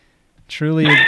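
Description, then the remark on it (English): A single goat bleat sound effect, loud, a nasal, wavering cry lasting about half a second after a brief breathy onset. “Truly a goat.”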